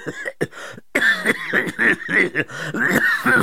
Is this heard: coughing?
yes